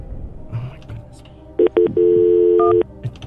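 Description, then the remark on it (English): Cell phone keypad tones as a call to directory assistance is dialed: two quick electronic beeps, then a longer held tone lasting nearly a second, loud and clear above a soft, rumbling background. “She's calling on her my cell phone. Phone. For directory assistance.”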